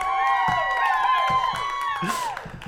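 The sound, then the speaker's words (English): At an awards announcement, a crowd cheers and whoops loudly and steadily for the new consolidated Best Act of Oral Sex category, with many voices holding long, wavering high cries and scattered clapping underneath. “Can I get some applause for that?”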